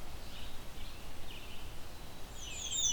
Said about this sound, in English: There it is again. They're fairly friendly warblers. They don't mind getting close to people. They're not skittish.